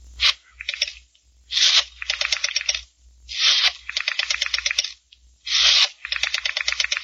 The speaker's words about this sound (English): Your hand is steady, sure, as you dial.